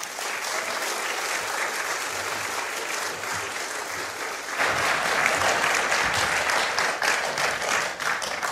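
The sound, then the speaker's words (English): An audience applauds steadily, a dense wash of many hands clapping that swells louder partway through and keeps going without any talking. “So I'd love for you to give him a round of applause.”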